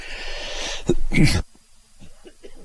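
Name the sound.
cough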